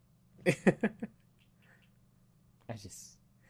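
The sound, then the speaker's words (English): A cat meows in a quick run of four or five short calls, then after a pause lets out one more brief, higher-pitched cry against a low steady hum. “Zach, you said Destiny and the cat's here to listen now.”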